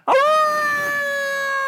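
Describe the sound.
A person howls like a wolf, a loud sustained tone that starts with a sharp onset and holds steady, a voice imitating a wolf's howl with no other talk.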